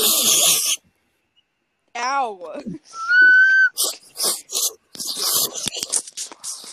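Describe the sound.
Loud, wet slurping noises come in a string of irregular bursts, mixed with a brief whistled tone and a short spoken exclamation.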